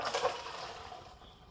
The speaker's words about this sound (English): put your colander into the sink. There won't be a lot of water left on your pasta. It's going to have soaked most of it up. Turn off your stove and dump your pasta into the colander.